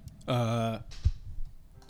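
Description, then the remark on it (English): A single bright, buzzy note from an electronic keyboard holds steadily for about half a second, then cuts off, followed by a soft thump and faint room noise. “No, that was just the keyboard. I had it on.”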